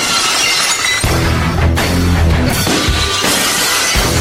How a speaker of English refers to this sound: Tyson Bajans with some little glass shattering there in the background for you.